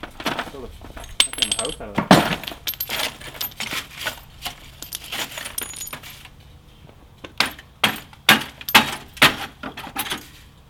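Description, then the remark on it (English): A heavy chunk of glass clinks and knocks repeatedly, with sharp bright taps and brief ringing tones, some clustered in quick bursts and others spaced out, with faint background voices. “That's a chunk of glass.”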